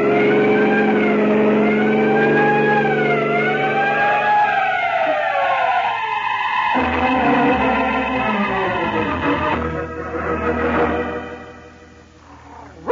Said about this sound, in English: there are some trucks ahead, Peter. Sound your siren.